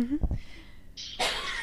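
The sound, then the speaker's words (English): A single short cough from a person who is under the weather bursts out right after a brief bit of voice, followed by a rush of breathy, hissing noise that carries through to the end. “I was about to say, you sound a lot better, and then you coughed.”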